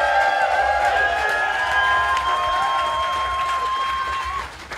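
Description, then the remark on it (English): A crowd applauds and cheers loudly and steadily for a band member being welcomed on stage as a guest, a dense wash of clapping with a few sustained whistles rising above it before the noise begins to fade. “give a very big round of applause from the band …”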